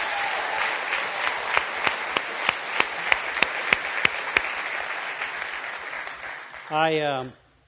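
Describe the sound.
A crowd applauds steadily for several seconds, a few sharp individual claps standing out in a regular rhythm, before a voice briefly cuts in as the clapping fades.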